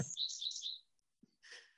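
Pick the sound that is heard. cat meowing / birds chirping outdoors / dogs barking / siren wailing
birds chirping outdoors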